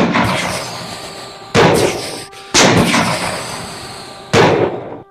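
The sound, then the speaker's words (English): Four loud rifle gunshots crack out at uneven intervals, each sharp blast trailing off into a long, rumbling decay before the next; no one speaks. “Anybody have a rifle?”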